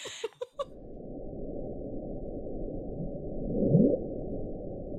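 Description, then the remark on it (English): The Bloop, a low-frequency underwater ocean recording made while monitoring ocean sounds: a low, murky underwater rumble drones steadily after a few brief clicks, with one louder upward-sweeping groan rising out of the noise near the end, deep. “And they were like monitoring sounds in the ocean down there, and they heard this thing that I'll try to insert if I can find it, but it literally was like a bloop.”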